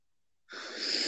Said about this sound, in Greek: Βαθιά ανάσα, μ' αρέσεις.